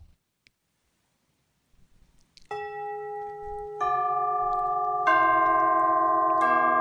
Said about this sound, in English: So that's tubular bells. It literally looked like the tailpipe of a car, basically. Perfectly put. Yeah, yeah. That's exactly it. Different sizes.